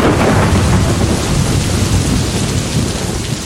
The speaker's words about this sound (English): And when the monsoon arrives, the clouds burst. It's called the burst of the monsoon.